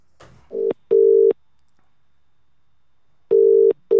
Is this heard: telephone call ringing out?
yes